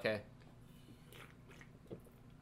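A wet gulp of pamplemousse sparkling water right at the start, followed by quiet mouth noises and a second soft swallow near the end.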